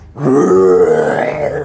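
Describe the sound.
A person voices a dragon's roar as the dragon's wings fly up: one loud, sustained, throaty growl lasting over a second, rich and rasping, fading slightly at the end.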